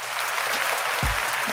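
A burst of steady applause as the show hosts give themselves a round, dense clapping spread across a broad hiss, with a couple of low thumps near the end and no talking.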